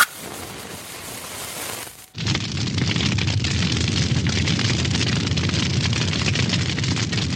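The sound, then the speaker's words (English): A flame ignition roar as a flame is lit to start a show: a couple of seconds of hissing, a brief dip, then a sudden loud, steady rumbling roar that holds unbroken to the end. No one speaks. “But before we get into anything, we have to light the flame.”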